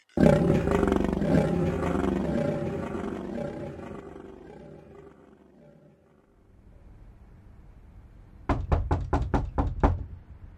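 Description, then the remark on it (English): A deep roaring sound fades away into near silence, then a quick, loud series of about seven sharp knocks rap on a door. “Yo, Rob, open the door.”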